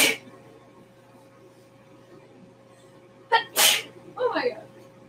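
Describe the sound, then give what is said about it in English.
Sneezing: a burst at the start, then after a quiet stretch a short sharp sneeze quickly followed by a bigger, louder one, trailed by a brief breathy vocal sound. “I stopped sneezing.”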